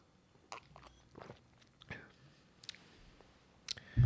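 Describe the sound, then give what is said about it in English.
Quiet sipping and swallowing of a carbonated drink that looks like a tiki punch: a few soft slurps and wet mouth clicks spaced over several seconds, ending with a louder low thump. “So we're going to take a sip really quick. Okay, we're doing this on mic.”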